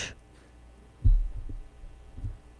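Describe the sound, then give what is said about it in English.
An electrical density detector, like a stud finder, gives off a few low, muffled thumping pulses, heavy and heartbeat-like, spaced irregularly over a quiet background with a faint hum, and no voices. “It doesn't detect a heartbeat. Oh, that's not a beating heart. That's just some stuff. That's electrical.”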